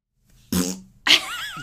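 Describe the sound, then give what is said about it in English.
A short, buzzy fart rips out, then a second, louder burst follows with a squeaky, wavering tone that trails off. No talking, just the two quick blasts. “No, not brain that. Fart.”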